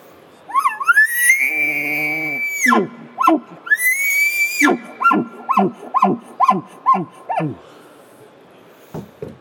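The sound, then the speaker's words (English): A person imitates an elk's challenge bugle, a call announcing dominance: a rising, high whistling scream held and then repeated, followed by a rapid run of about eight guttural chuckles, loud. “You're going to have that scream, lip ball, that dominant chuckle into it. So this is a challenge bugle.”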